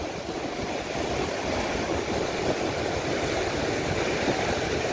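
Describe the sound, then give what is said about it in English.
A steady, loud roar of churning water as big ocean waves break near rocks where they hit shallower depth, continuous and dense with no distinct pauses between waves and no voices. “this will give you an idea of what water does as big waves hits shallower depth”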